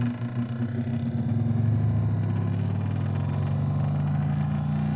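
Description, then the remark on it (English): A large dimensional travel machine powers up with a deep, continuous rumbling hum that swells in the first seconds and then holds steady, fairly loud, with no voices. “Wow, this is how long it takes to power up?”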